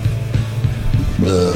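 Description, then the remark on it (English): A long, loud, croaking burp into a microphone rumbles low with a few rhythmic pulses, then jumps higher in pitch near the end. No words are spoken. “Guys, no burping in the microphones.”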